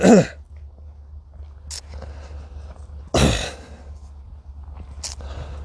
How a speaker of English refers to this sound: Excuse me, where this cough's coming from? Probably from me yelling.